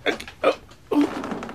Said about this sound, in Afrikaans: Regs, meneer, skuif die stoel 'n bietjie terug.